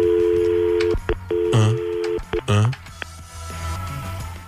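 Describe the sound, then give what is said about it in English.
A steady telephone dial tone hums, broken by a few short touch-tone beeps as the 411 directory assistance number is dialed, with two brief voice-like sounds in between. “Can you remember the last time you used 411? No. Want to use it right now? Yes. Let's try it.”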